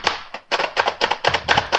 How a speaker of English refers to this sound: Just chopping my nuts up with our little food chopper here real fast. Kind of like a big dome with some blades under it.